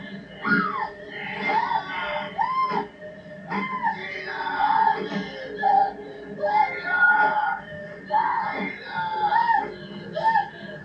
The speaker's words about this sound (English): This guy is giving his A-plus effort acting in that corner, yelling